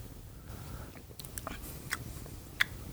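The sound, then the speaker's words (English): Someone takes a quiet sip of a drink while tasting drinks, with a few soft wet slurps and mouth clicks spread over a couple of seconds against a low background rumble; no one speaks. “He's taking a sip.”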